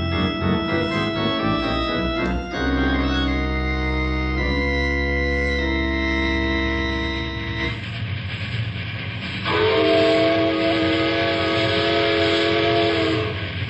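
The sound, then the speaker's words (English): A train whistle blows in long, sustained, loud tones from a train far from civilization, shifting between several harmonic pitches over a low rumbling rail noise, with a final bright blast near the end. “Hey, lay off that whistle, Tim.”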